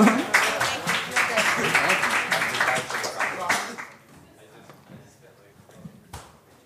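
An open mic night audience claps loudly for a performer in a dense, steady burst for about four seconds, then the applause abruptly dies away, leaving faint scattered noises and a few stray claps.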